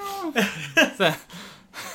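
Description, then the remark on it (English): A voice playfully imitates a cat's meow with a high, falling tone, followed by a few short breathy bursts like stifled laughter, close and moderately loud. “Like a big cat. That's what they're all picturing. A big cat named Clover.”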